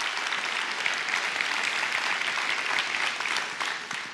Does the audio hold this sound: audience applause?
yes